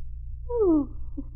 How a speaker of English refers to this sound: Just put your hand on the knob and turn it. Oh, it would be a squeaky door.